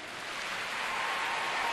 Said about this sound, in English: And it's honestly perfect. Like, the applause is wild.